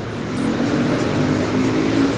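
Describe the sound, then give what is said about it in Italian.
Steady, dense street traffic noise with a continuous rumble of car engines and faint tonal hum, fairly loud and unbroken throughout, with no voices. “Il rumore della strada, c'è un bel po' di casino.”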